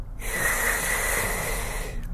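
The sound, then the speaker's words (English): A single long, deep, airy breath in and out, a steady rushing hiss lasting about two seconds with no talking. “Taking in O2, oxygen, breathing out CO2, carbon dioxide, carbon monoxide, whichever one it is.”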